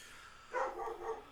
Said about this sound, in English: Sorry, my dog is yipping.